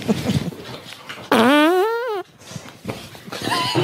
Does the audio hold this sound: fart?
yes